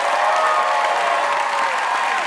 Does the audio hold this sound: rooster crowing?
no